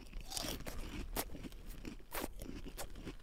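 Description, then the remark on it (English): Prawn cocktail crisps being crunched, a run of sharp, brittle bites and chews over about three seconds, fairly loud and irregular, with no talking. “Crunchy at first.”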